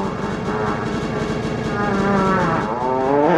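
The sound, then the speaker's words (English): A drawn-out, buzzy fart sound effect, low and raspy with a rich harmonic tone, holding steady for about three seconds before its pitch wobbles upward at the end. No one speaks. “Where'd you find that fart sound from?”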